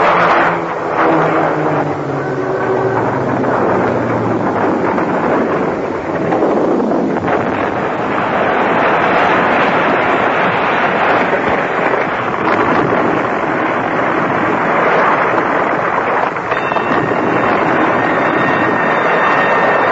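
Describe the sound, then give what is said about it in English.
A loud, roaring airplane engine dives with a falling whine as the plane crashes, then gives way to a sustained rushing, rumbling din, with no voices. “Look at the plane! There's something wrong! She's crashing!”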